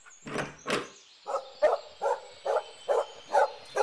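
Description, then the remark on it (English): A puppy barks over and over in a quick, steady rhythm, around nine sharp, fairly loud barks, with no voices. “Come here, you silly dog!”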